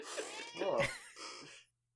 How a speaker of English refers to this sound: The cat's still meowing because she doesn't know if she wants to be in the room or not.